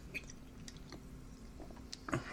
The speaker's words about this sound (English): Yeah, I just took a sip of that one. I'm going to take a sip of the Sea Dog.